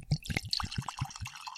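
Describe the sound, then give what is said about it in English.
Sparkling water poured into a glass with quick rhythmic glugs and a bright fizzing hiss on top, fairly quiet, with no one speaking. “He's pouring.”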